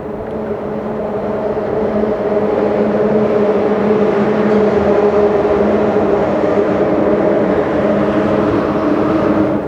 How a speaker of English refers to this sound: Calm and chaotic. Calm when it's just the water, and chaotic when the cars pass by the bridge.